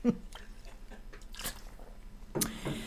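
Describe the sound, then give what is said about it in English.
A woman takes a drink of water, with a few soft sips and swallowing gulps spaced out over a few seconds, plus faint mouth clicks in between. No one speaks. “One moment as she takes another drink. And it's only water.”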